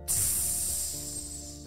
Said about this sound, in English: As soon as it hit his tongue, it sounded like water being poured on fire.